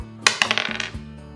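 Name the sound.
dice being rolled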